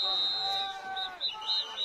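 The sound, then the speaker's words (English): A shrill referee whistle blasts during a football game, signaling a timeout for Northern Cass with 5:49 left in the fourth quarter. It holds one long high note, then breaks into several short trilling bursts, heard over a low murmur of crowd noise. “And a whistle, and I believe a timeout.”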